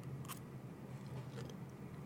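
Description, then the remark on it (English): A few brief, crisp crunches of someone chewing a crunchy broccoli salad, separated by short pauses over a steady low hum, with no talking. “Oh, you can hear the crunch.”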